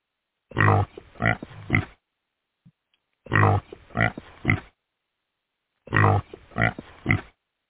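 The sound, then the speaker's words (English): Three matching bursts of pig oinks and grunts, each a quick run of snorting calls, separated by short silences. Fairly loud, with no talking. “Ooh, I'm getting a lot of oinks.”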